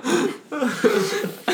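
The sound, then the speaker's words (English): A person burps several times in a row, low rumbling croaks run together with short gaps, fairly loud and with no talking over them. “Oh my God, I cannot stop burping.”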